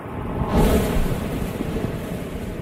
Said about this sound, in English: Other commercials in the campaign imitated the sound of waves pounding on the shore by squeezing bags of plastic waste.